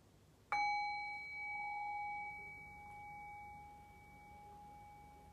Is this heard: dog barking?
no